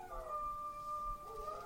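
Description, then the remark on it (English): Two dogs howl together in long, sustained, overlapping wails that shift slightly in pitch partway through, steady and fairly loud with no talking, while a siren sounds somewhere outside. “It sounds like you have eight dogs right now.”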